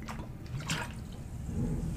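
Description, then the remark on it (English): Seltzer pours steadily, a liquid splash with a brief brighter gush partway through, over a continuous crackling fizz. No one speaks. “See, the problem with drinking seltzer while running a podcast is every time you pour it back, it goes psst, and then it's going to just...”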